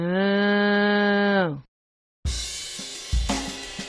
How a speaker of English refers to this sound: Moo.